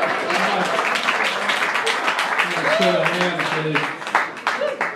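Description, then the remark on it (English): A crowd at the Comedy Store on the Sunset Strip in Los Angeles applauds the comedian's son steadily, a dense patter of many hands clapping throughout, with a few scattered voices and whoops rising over it near the end. “Folks, how about a hand for my son? Can we give him a hand?”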